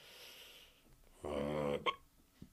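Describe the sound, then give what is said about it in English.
One voiced hiccup, a short throaty gulp with a sharp catch at the end, followed by a faint tick, with quiet background noise and no talking. “Hiccup.”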